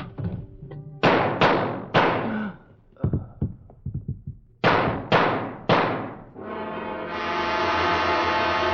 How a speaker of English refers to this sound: I hear a gunfire.